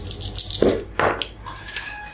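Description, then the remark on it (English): Dice clatter across a hard surface in a couple of quick bursts of rattling clicks, then settle with a few faint ticks, rolled for an investigation check in a tabletop game. No one speaks. “You gotta roll a different die.”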